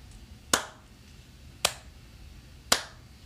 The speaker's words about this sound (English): I hate your slow clap.